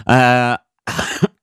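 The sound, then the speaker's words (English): A loud coughing fit: a long, strained, throaty cough followed after a short pause by a rougher, breathy burst of coughing, with no talking. “Fucking coughing fit.”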